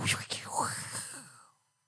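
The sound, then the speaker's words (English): A voice imitates gusting wind with a long, breathy whoosh that swells and falls for about a second and a half, fairly loud, then fades to silence. “Because it's when the wind picks up, you hear nature breathing like a, you know.”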